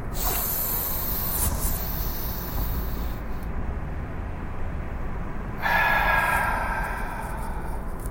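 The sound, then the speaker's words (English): A long, hissing, really deep breath drawn in, a quieter pause while it's held at the top, then a strong, airy exhale rushing out over the last couple of seconds; the third and last of a series of deep breaths. No talking. “All right, last one. Really deep. Hold it at the top. It can hurt a little bit, and then let it go.”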